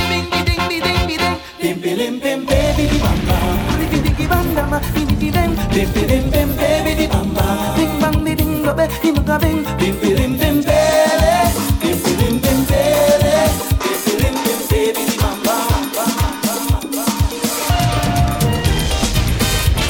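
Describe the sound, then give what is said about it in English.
A lively soca song plays steadily at full volume for the whole stretch, with a driving beat, bass and bright melodic lines, and no talking over it. “Soca would absolutely not be what it is without this man right here”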